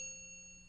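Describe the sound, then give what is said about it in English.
A single bell sound effect, played by accident, rings out with a bright metallic shimmer, fading slowly over a brief moment, quiet and alone with no voices. “No bell. That was an accident.”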